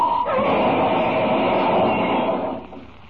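A car travelling at 60 miles an hour crashes through a bridge parapet and into the river below, in a loud, continuous roar of grinding, rumbling noise that lasts about two and a half seconds before dropping away sharply. No one speaks.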